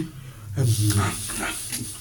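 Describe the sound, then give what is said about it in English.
A man's voice imitates the noise a dog makes at the end of a yawn, a drawn-out, breathy vocal sound with a low whine that rises then trails off, fairly loud. “Watch a dog when it yawns. Very interesting. He yawns and he does this.”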